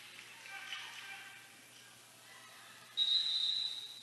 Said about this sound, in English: We have a quick whistle to reset the shot clock, which they do.